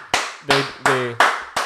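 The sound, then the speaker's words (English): Hands clap together in a steady, even beat, five loud sharp claps in quick succession, with a faint sustained voice-like tone faintly audible between some of them. “Everybody clap it up.”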